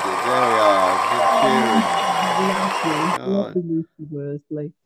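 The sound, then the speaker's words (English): A burst of crowd cheering and applause, played as a sound effect, dense and loud with raised voices, lasts about three seconds, then cuts off abruptly, followed by a person talking. “Right, let's have some cheering.”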